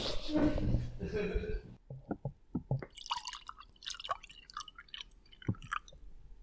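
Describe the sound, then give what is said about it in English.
White wine from the fridge glugs and trickles into glasses after a short stretch of talk, with bright clinks and splashy, dripping liquid sounds coming in quick irregular bursts. “But by the way, I have some white wine in the fridge. Do you want some?”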